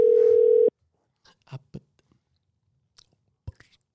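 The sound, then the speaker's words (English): A phone call's ringing tone sounds once as a call is placed to a friend, a loud steady hum lasting under a second, followed by near silence with a few soft clicks and faint mouth noises. “We already got the phone ringing playing in the background.”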